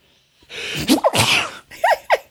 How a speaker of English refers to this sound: I'm gonna sneeze. Hang on.